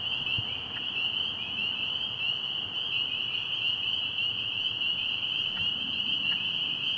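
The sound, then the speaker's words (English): A dense, continuous spring chorus of peeping frogs, high-pitched and shrill, with many voices overlapping into a steady ringing wall of sound that stays loud throughout, with no one talking. “You don't want to sing too good, the lady frogs will show up.”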